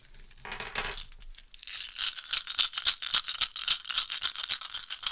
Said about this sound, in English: I've just learned that I need dice rolling ASMR in my life.